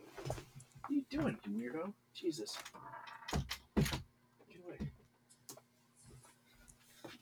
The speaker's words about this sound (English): Get away. A cat just busted down the door.